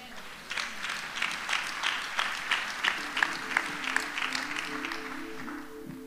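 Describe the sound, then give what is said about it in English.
An audience at a Christian gathering claps steadily for several seconds, a dense rattle of many hands with a few louder accents, while faint voices and a low sustained tone rise underneath toward the end. “I know you are clapping hands, but you're thinking, like, would I go?”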